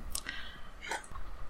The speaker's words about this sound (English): I guess she can chew on my AirPods.